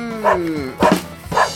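A dog barks three times in quick succession, fairly loud, the first bark drawn out into a falling whine before two shorter, sharper barks.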